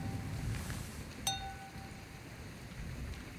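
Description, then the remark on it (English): A single bright clink of glasses tapping together, followed by a clear ringing tone that fades over about a second, set against a low steady background hum with no talking. “Cheers.”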